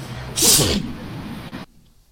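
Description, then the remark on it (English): A single loud sneeze bursts out with a sharp, hissing blast, followed by a second of low background murmur before going quiet. “I'm about to sneeze. Oh shit.”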